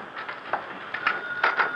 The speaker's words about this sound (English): Yeah, sounds like the phone.